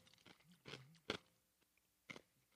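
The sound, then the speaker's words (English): Crunching of an ice cube being chewed, with several sharp, brittle bursts spaced irregularly and quiet pauses between them, and no talking. “You caught me in the middle of chewing an ice cube.”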